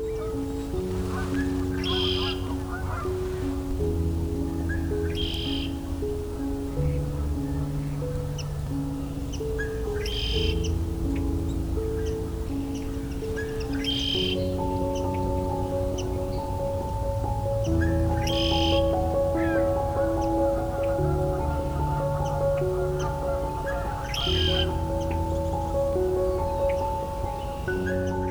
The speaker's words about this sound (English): For me, the arrival of the initial all-male flocks of red-winged blackbirds is one of the first signs of spring. And close up on a red-winged blackbird.